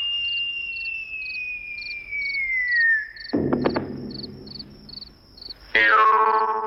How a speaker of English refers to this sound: That whistle is like a bomb dropping, and it represents the hat falling out of the sky, followed by a distant, muted thud.